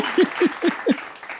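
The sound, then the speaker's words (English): A half-hearted pity clap: four slow, evenly spaced hand claps, moderately loud, trailing off after about a second, with no one speaking. “Thanks for the pity clap.”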